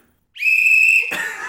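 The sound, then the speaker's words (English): A personal safety (rape) whistle is blown once, a loud, piercing, steady shriek lasting under a second, then cuts into a burst of rough, noisy sound. “Rape whistle!”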